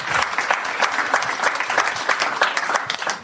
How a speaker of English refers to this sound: So please give him a round of applause. He's been great.